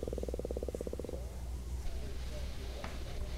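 A stomach growls with a rapid, buzzing gurgle for about a second, then fades into a low, steady rumble that lingers for a few more seconds. No one speaks.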